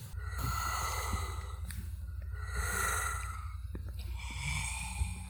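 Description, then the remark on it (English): Slow, heavy breathing from inside a cave in three long, raspy breaths with an airy, hollow quality, each swelling and fading over a steady low rumble, no voices present. “He didn't hear anything, but he thought he heard some breathing.”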